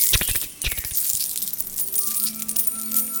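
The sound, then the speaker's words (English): Coins jingle and clink together in a bag, a dense cluster of bright metallic chinks near the start, then softer scattered rattles and faint ringing tones as they settle, with no voices. “Coins moving around as you're trying to stealth.”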